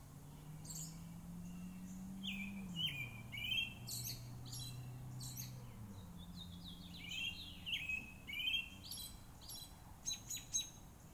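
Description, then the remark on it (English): Several birds chirp and tweet in quick, overlapping bursts outdoors on a front porch, clear, over a steady low hum and faint background ambience, recorded on an H5 recorder with the MS mics of an H6. No one speaks. “Let's just listen to a few bird sounds, and then I'll be back.”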